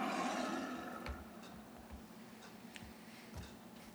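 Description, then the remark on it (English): A loud, growling roar from a horned monster with rows of teeth bursts out at the start, then trails off into a low rumbling drone with faint, regular ticking sounds underneath. No one speaks. “It lets out a loud roar.”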